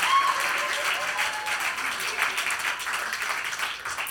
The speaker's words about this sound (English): Just clap, please. Everybody clap, please. Can we all just clap? Let's just all clap together.